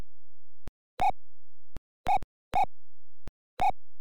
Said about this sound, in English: That's like Mario's running, then you press the opposite direction, and they start skidding a little bit.